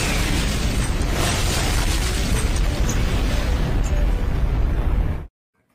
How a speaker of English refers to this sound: Get an explosion for you right now.